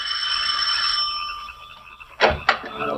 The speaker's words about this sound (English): Then, ascending the three stone stairs to the heavy oak door, he rings the bell.